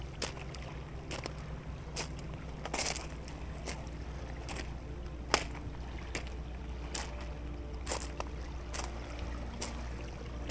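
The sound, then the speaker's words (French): Waves lap gently over a pebbly shore, with a steady low rumble beneath scattered crisp splashes and clicks of shifting stones, no voices present. “Les vagues continuent de se répandre sur les galets sur lesquels vous marchez.”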